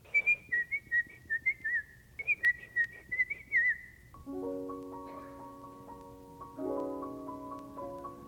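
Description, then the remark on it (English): A bright whistled call of short, rising-and-falling notes repeated over about four seconds, the whistle used to call a little dog named Pan, followed by sustained musical chords. “had a little whistle for him, and it went like this.”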